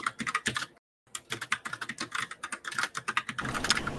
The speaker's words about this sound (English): Yeah, all right, furious typing.